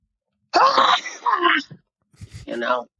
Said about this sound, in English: There we go. There's two sneezes from the donkey.